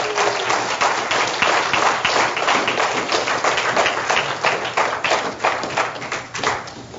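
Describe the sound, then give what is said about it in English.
An audience claps hands in praise of God in a dense, steady burst of applause lasting several seconds, with many overlapping claps forming a loud, continuous crackle that eases slightly toward the end. “Now, one more time, can you give God another hand clap of praise?”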